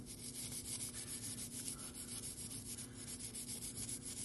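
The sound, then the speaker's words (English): A stiff brass-bristle brush shaped like a wooden toothbrush scrubs steadily against a bicycle part in a shop, in quick back-and-forth strokes, making a continuous, gritty, hissing scratch at an even, moderate level with no one talking. “Let's go back into the other side of the shop, and we will use a simple... looks like a wooden toothbrush. And this has got brass bristles on it as well.”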